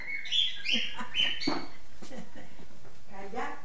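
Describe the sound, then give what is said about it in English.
A very chatty pet bird in a house chatters in quick, bright chirps and squeaky tweets, busiest at first, then continuing more quietly while people talk. “And his daughter, and grandkids, and cats, two Doberman pinschers, and a very chatty bird.”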